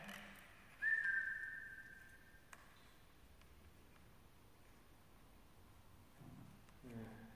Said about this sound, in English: So bizarre, is it after you whistle? After I whistle, I whistle twice to see if you can make noise.